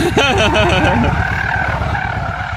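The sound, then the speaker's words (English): A car's tires squeal and skid steadily as the engine roars while the driver does circles (donuts) in the road, the pitch warping and sliding as the vehicle spins around, loud the whole time. “She's just doing circles in the road, huh?”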